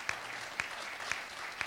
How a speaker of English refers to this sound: Yeah, let's give us applause. Otherwise, we're kind of dying here.